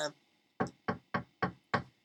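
knocking on a door

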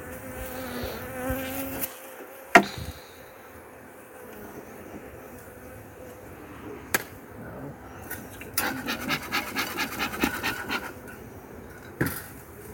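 honeybees buzzing

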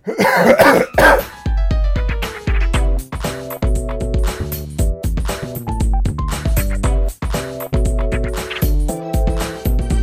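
coughing

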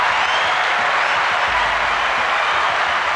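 applause

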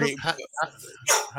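dog barking

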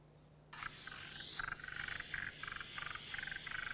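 spotted marsh frog calling

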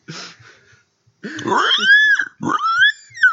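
pig oinking and grunting

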